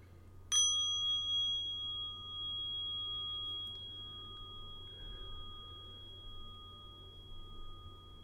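A single soft strike of a bell, its clear metallic tone ringing out and slowly fading over several seconds against a quiet background hum.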